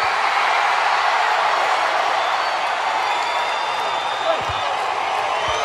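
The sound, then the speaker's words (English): A large WWE arena crowd in Sacktown roars with excitement, a dense, steady wash of cheering and voices that stays loud and unbroken throughout, with faint whoops rising out of the din. “You're right, the crowd is excited, and so am I.”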